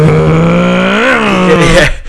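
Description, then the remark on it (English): A voice imitates a revving car engine, a loud, steady buzzing drone that swells upward in pitch midway, then cuts off abruptly after about two seconds. “Yeah, I do sit on the right, and like my foot just goes down a little bit, and I pretend to get the old tea tray out, and I go, I'm driving the car.”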